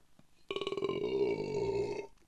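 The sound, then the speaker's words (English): A single long, loud belch, starting with a rapid rattling pulse and stretching into a deep, droning croak for over a second before cutting off. No talking. “I feel a burp coming on.”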